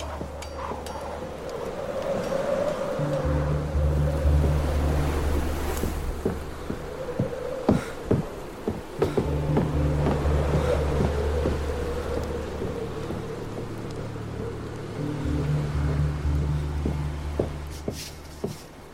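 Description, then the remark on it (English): Low, droning bell tones swell and fade in three repeated phrases over a steady hiss of rain and rumbling storm ambience, with scattered sharp cracks. No one speaks. “What I'm talking about is the bell sounds that are used up around the wall.”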